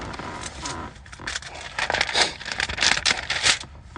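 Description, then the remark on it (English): A car window is rolled down a little further on a warm day in the 80s, giving a continuous rough, scraping rush of noise that swells and dips in uneven bursts for several seconds, with no talking. “I'm gonna roll the window down a little bit further.”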